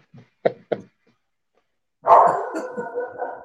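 A dog gives two quick, sharp barks, then after a short pause lets out a longer, drawn-out run of whining, yelping barks. No one speaks.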